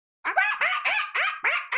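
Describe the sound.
A person imitates a squawking bird with five or six loud, harsh, rapid squawks in a steady rhythm, clear with no talking over them.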